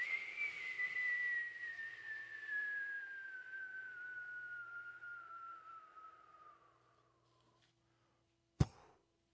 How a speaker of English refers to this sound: I always love that about the Roadrunner cartoons. When Wile E. Coyote would fall, and you'd hear that when he'd hit the bottom, there'd just be a very subtle... It's a little explosion.